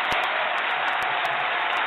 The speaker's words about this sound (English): Wow, the crowd is absolutely going nuts. Going nuts.